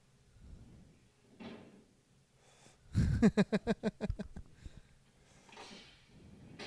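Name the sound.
door opening and closing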